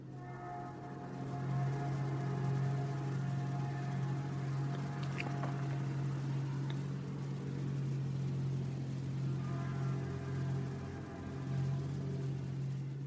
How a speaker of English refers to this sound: Like those train whistles in the background.